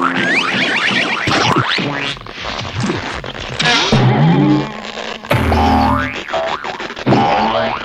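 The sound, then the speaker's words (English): A rapid string of old Hanna-Barbera-style cartoon balloon sound effects: boings and springy wobbles, with sliding, bending pitches, squeaks and zips, loud and continuous throughout with no talking. “I love the balloon sound effects.”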